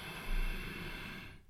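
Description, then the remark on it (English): A single loud, deep breath drawn in, a rushing, breathy noise that holds for over a second before cutting off abruptly. No one speaks. “You are not afraid to make loud fucking breathing sounds.”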